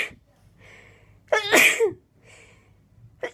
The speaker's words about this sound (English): She's sitting in bed and you can't see the top of her face. I don't know what brought that on. You can only really see her chin and her mouth. She's wearing a black dress with little white flowers on it. And she's just sneezing, man.